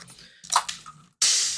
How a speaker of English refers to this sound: I do have a can of tonic. Should I open that up? Should I do it next to the microphone? Let's have a look.